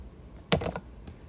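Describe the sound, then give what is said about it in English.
A quick burst of papery clicking as thick tarot cards are shuffled together, followed by a single faint tap, with no voices. “These cards are a little thicker, so they're a little harder to shuffle.”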